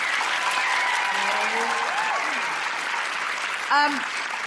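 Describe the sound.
A live audience claps steadily and loudly throughout, a dense wash of applause with a few voices calling out over it and a brief shout near the end.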